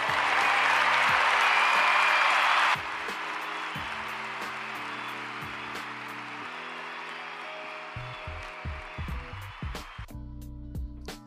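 A crowd breaks into loud applause that stays dense for a few seconds, then eases into a steadier, lighter clapping that carries on to the end, with no one talking.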